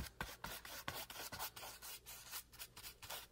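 Soft swishing of a paintbrush dragged across paper in an art class, painting a bright blue sky, with repeated strokes in an uneven rhythm and no voices.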